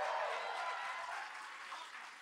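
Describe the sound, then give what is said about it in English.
An audience at a live show at Palladium Times Square applauds steadily after a mention of the WGA strike, a dense wash of many hands clapping at once with no breaks, holding fairly loud throughout and easing off slightly toward the end. “By the way, while we're applauding labor, Palladium Times Square is a union venue.”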